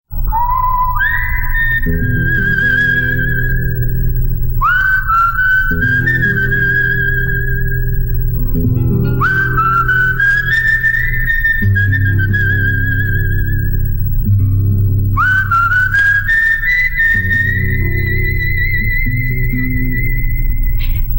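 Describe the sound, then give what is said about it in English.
A clear, loud whistled melody made of long sustained notes that swoop upward into each phrase, whistled by a man at the start of a song in a film, repeated several times over a steady instrumental backing with no talking. “It's just like he starts whistling.”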